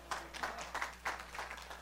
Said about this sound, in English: Instead of clapping, you should be praying for them.